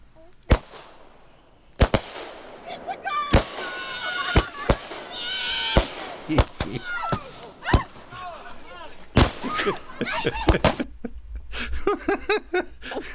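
Fireworks at a gender reveal party explode in a loud, irregular string of sharp bangs, some close together, with whistling streaks and crackles between them while a crowd chatters and cheers in the background.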